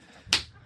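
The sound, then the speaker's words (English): A single sharp slap rings out, crisp and bright, with a quick decay into a quiet background. It stands alone without any talking around it. “you got to slap.”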